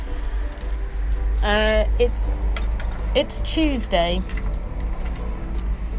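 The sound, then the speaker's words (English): Keys jangle and clink in a front door lock as the door is locked left-handed, with a steady low rumble underneath and a few bright metallic scrapes. A person speaks briefly over the rattling. “I'm trying to lock my front door with my left hand, which is, well, it's never going to work, is it?”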